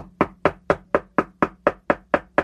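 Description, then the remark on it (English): Steady knocking on a door by a vote harvester, about ten firm, evenly spaced raps at roughly four per second, each a sharp hollow thud with a quick decay. No one speaks. “And then you'll be getting a vote harvester knocking on your door.”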